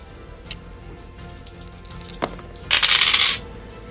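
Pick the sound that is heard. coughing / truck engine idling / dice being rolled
dice being rolled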